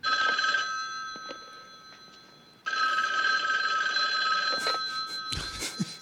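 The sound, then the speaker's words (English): A telephone bell rings in two long bursts with a brief gap between them, loud, ending with some clattering noises. “You're like, this motherfucker, this nigga gonna call him again.”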